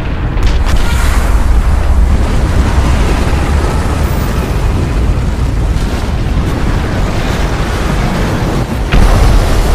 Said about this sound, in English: the icefall crashes into Ralph, violently tearing him away from the line in front of me.